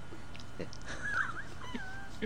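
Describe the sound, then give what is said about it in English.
A person's voice makes high, thin whining sounds like a small dog whimpering, two brief wavering cries over a faint background hum. “It made you sound a bit like a small dog, briefly.”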